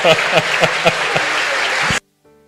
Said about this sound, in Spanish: Denle un aplauso, por favor.